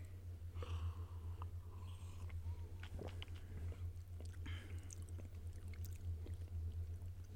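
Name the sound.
sipping orange juice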